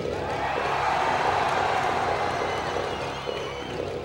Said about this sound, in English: Listen to that crowd.